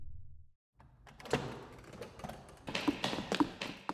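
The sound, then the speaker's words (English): The door of a room down a hallway in a bunker rattles and knocks in its frame as the room rumbles, a cluster of irregular taps and thuds over a low rumble, moderately loud, with no voices. “Whoa, there's a room down the hallway that's rumbling. Like, the door is shaking.”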